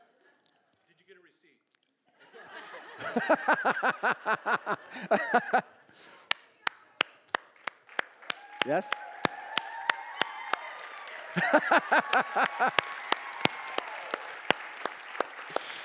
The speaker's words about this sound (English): All right. You guys got to clap for this.